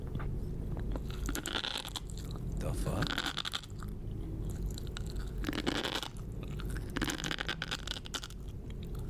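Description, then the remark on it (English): A woman eating Japanese food, apparently tobiko fish roe and sea grapes, with loud, crackly chewing and irregular bursts of crisp crunches repeating over several seconds. A voice briefly exclaims partway through. “I don't know if I love that sound or not.”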